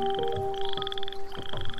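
Male frogs croak in an overlapping night chorus, with rapid pulsed trills that rise and fall in bursts over a steady, shrill background hum from other calling frogs.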